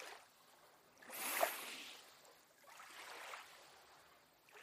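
Gentle waves wash onto a white sand beach in soft, hissing swells, two rising surges a couple of seconds apart, fairly quiet with no voices.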